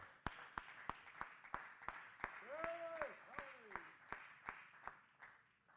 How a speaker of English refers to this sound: Would somebody clap your hands, and would you magnify God for a moment?